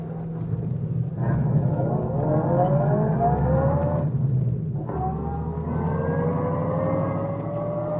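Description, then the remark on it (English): A car engine accelerates hard on a highway as it sets off after another car coming from town, its pitch climbing steadily, dipping briefly at a gear shift, then rising again in a loud, continuous roar with no voices. “Get ready to start after him as soon as he passes.”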